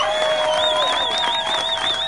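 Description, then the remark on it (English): An audience applauds and cheers in support of abolishing slavery from Colorado's state constitution, with a steady wash of clapping and a loud, wavering whistle riding over it, sustained for a couple of seconds. “Round of applause if you want Colorado to be the first state in our country to abolish slavery out of our state constitution.”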